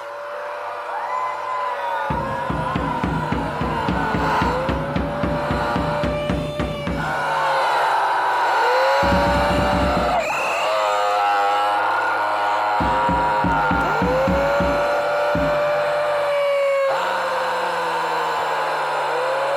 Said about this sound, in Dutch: Soms zetten ze sirenes aan op hun megafoons, waar ze dan heel hard doorheen schreeuwen. Dat klinkt zo.